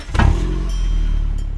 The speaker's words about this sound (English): Big explosions help demolish buildings that need to be torn down, while mini explosions cause your car engine to start.